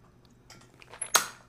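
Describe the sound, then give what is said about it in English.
Someone chewing peanuts, a string of small crunchy crackles building to a sharper, louder crunch near the end, with no talking. “Why do I forget every time that peanuts are a bad idea to snack on?”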